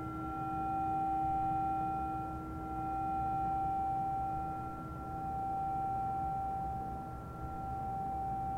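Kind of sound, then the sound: signal or alarm, meditation bell chime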